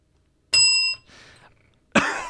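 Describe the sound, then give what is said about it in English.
A single bright bell ding rings out clearly and fades within half a second, followed by soft rustling and then a sudden harsh, breathy burst like a cough. “All right, we have data point one for the bell.”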